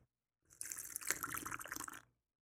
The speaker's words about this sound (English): But before we get off, let me just get a little bit of my sip of my alcohol here.